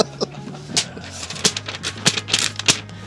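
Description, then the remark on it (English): Crisp crackling as a sheet of paper is crunched up in the manner of David Letterman, coming in a string of sharp, irregular bursts over a few seconds with no one speaking. “I like the Letterman crunch of the paper.”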